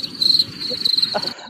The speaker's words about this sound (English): Fucking add your cricket sound right here. You know, I've been waiting for that one all day too. Where's that one? I need to maybe organize them alphabetically because I know I have crickets, but I'm like, where? Oh, here's a cricket.